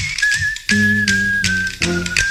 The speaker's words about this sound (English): Oh, my God. Everybody knows that song. Everybody knows that song. That is the legendary Harlem Globetrotters theme song.